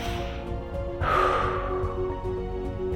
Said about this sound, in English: So the first way to start doing this is you say stop, you close your eyes, and you take 3 deep breaths.